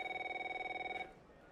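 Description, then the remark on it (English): A telephone rings once with a bright, fast-warbling electronic trill that lasts about a second and then cuts off, leaving quiet room tone. Clear, with no talking. “Is that your phone?”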